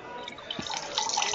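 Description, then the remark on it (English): Liquid pours steadily into a container, a continuous trickling splash that grows slightly fuller and louder over a second or so, with no voices. “Either somebody's pouring a drink, or somebody's pissing.”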